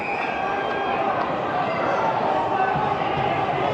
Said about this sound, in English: Crowd yelling for something. They can see that I can't.